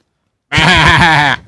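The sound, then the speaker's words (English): A single loud, wavering bleat of under a second, made by a person imitating a sheep, with a quivering tremble running through it before it cuts off. “You are a sheep.”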